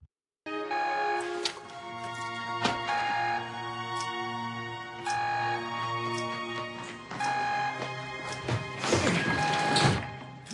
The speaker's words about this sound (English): When I say the counter beep, I mean that, you know, that kind of countdown beep. Take a listen here as it kind of both the beep, I think, interacts with the music, not just with its tonality, but also with its rhythm.